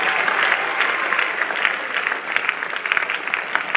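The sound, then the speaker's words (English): A church audience claps their hands for a testimony in a dense, steady burst of applause that stays loud throughout, with many overlapping sharp claps and no voices standing out. “Clap your hands for the testimony.”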